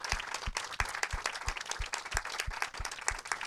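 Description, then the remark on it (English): An audience at the Garden Cinema applauds the guest speakers after a film screening and discussion, many hands clapping at once in a dense, continuous patter, with a few sharper individual claps standing out at a regular beat through the wash. “Big round of applause for coming and speaking.”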